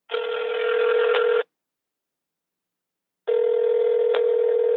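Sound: telephone ringing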